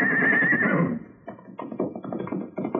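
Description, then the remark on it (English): A horse lets out a loud, quavering whinny on seeing people, followed by a quick run of uneven thumping and rustling sounds as it runs off. “His horse saw us and ran.”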